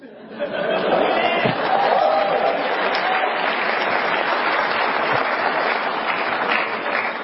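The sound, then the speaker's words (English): A sustained burst of audience applause at a debate, steady and loud for about seven seconds, with dense overlapping clapping and a faint murmur of crowd chatter underneath. “If you would hold your applause until the debate proper is completely done, that is, you can applaud for both debaters, perhaps maybe at the very beginning here in a moment,”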